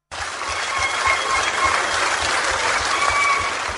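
Members of Cameroon's Academy of Sciences applaud steadily in honor of a young scientist presenting the Young Scientist African Union Award, dubbed the Kwame Nkrumah Award: a dense wash of many hands clapping at an even, sustained level without pause from start to finish, no voices standing out.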